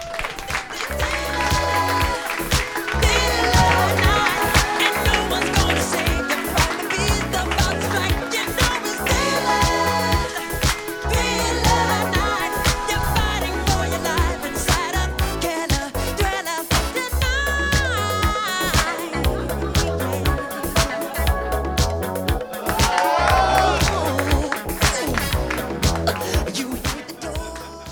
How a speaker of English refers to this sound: Guys, it's a pleasure, an honor to bring him to the stage. Big round of applause for Willie Hunter, guys.